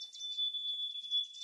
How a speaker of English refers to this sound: Yeah, I got a sample. Here you go. This is actually. Nice. Here's the soon to be extinct birds.